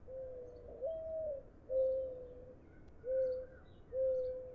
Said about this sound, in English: When birds begin to sing again, you know they're getting ready for nesting season.